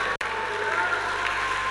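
An audience claps steadily, a dense, even wash of many hands that holds at a fairly constant level for nearly two seconds after a momentary cut at the start.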